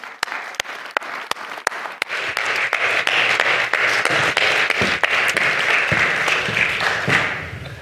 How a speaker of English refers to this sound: We've hired a new kids pastor. She's fantastic, and you're going to meet her in 1 second. Everyone, a big round of applause for